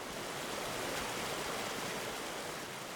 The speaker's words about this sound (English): Standing in the water as it winds between a disc golf course and a nursing home